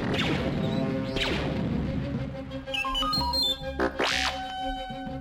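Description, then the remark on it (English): Several sci-fi laser blasts zap past with sharp sweeping whines, mixed with crashing explosive bursts in a dense, loud, chaotic barrage, fired by guards and exploding around the droid R2-D2 as it speeds away; no one speaks. “R2-D2 sped away as laser blasts exploded around him.”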